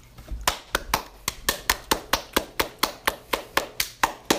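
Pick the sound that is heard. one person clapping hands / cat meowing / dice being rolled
one person clapping hands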